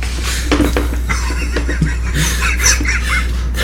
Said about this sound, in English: Ironically, makes a racket, fumbling across the table trying to roll the die. To be as stealthy as you can rolling the die.